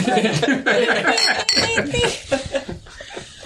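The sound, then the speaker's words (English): Glasses of beer clink together several times as friends toast, bright ringing taps amid lively overlapping voices and a bit of laughter. “I can only think of one thing that would make it taste better: is to have a cheers with friends from near and far.”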